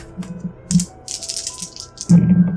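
Four dice rattle and clatter together for a speed roll, a brief shaking burst followed by a louder tumble as they spill and settle on a hard surface, with no voices.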